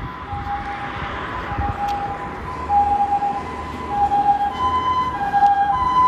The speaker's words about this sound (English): God, so much noise now. Please bear with me. Here's the ambulance. I better pause.